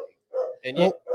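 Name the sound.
dog barking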